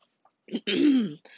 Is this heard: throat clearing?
yes